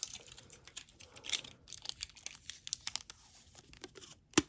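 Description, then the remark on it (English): Quiet crackling and crinkling with short rasping rips as a strip of tape is pulled and torn off the roll, ending in a sharper snap; no one speaks. “Tape. It must be in all of the wrapping paper that I brought.”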